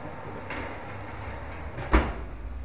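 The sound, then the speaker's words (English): An oven door creaks open with a soft scrape, then shuts with a single firm thud as food is put in the oven, heard alone against quiet background noise. “I'm just going to chuck this in the oven.”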